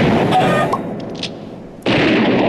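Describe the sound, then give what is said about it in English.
Loud, dense gunfire and explosions rumble in a continuous barrage, dipping briefly into a lower, echoing roar before another heavy blast surges back up. No voices are present. “Wow, a lot of shooting and explosions going on.”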